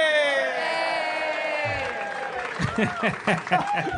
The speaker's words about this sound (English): Hey! That's applause bigger than warranted.